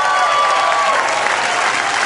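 Steady, dense applause from a comedy club audience welcoming the next comedian to the stage, loud and continuous throughout with a few cheers or whistles rising above the clapping.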